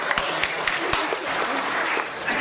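A room full of people claps steadily, dense overlapping hand claps forming a continuous wash of applause with a few sharper individual claps standing out near the start.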